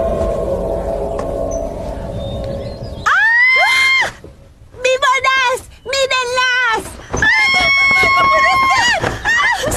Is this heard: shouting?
yes